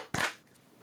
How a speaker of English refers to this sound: And we'll clap sync in 3, 2, 1.